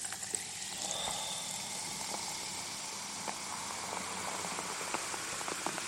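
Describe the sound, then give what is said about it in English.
A fizzy El Toro Grapefruit Paloma drink (tequila, lime, grapefruit and soda water) is poured, a steady bubbling hiss of carbonation dotted with small pops and crackles, continuing evenly for several seconds with no one talking. “Ooh, that bubbly goodness.”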